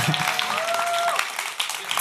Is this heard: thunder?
no